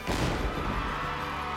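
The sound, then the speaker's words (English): A single loud starting cannon blast fires at 9 a.m. to begin a footrace, with a sharp crack, then a deep rumbling roar that lingers and slowly fades. No one speaks. “At 9 a.m., the starting cannon fired.”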